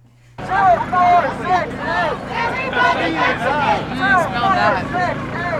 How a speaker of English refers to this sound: After the speeches were over, the crowd began its march around the Capitol building. Here are some sounds from the march.